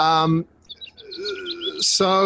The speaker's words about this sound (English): and also the birds have just been going bananas. The birds are fantastic.